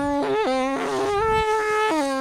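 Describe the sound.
A voice imitates a dad's car engine with a bee buzzing inside: a continuous, nasal buzzing hum that jumps between a low drone and higher whining pitches several times over about two seconds.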